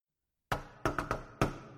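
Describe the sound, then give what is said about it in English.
Five loud knocks on a door with a resonant, booming thud: one knock, a pause, a quick triple, then a final knock, each ringing briefly as if through a large empty space. “I'm going to knock on the door.”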